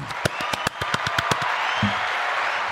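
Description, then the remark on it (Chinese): A short burst of applause: about ten sharp claps in a quick, steady rhythm, then a dense, hissing wash of many hands clapping that carries on to the end. “感恩大家，非常谢谢，掌声鼓励鼓励。”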